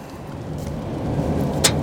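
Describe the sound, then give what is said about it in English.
Steady road noise from inside a car merging onto Interstate 75 in the rain behind a pickup truck, a low rumble under a broad wet hiss, with one brief sharp tick near the end as road debris hits the car. No one speaks. “Now the rain's coming down.”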